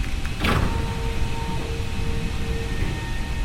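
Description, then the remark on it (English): A mechanical whir and hum as a flooded chamber's floor slides open to the ocean, beginning with a brief rushing burst and settling into a steady droning motor tone with faint tonal whines, no voices. “open the chamber floor”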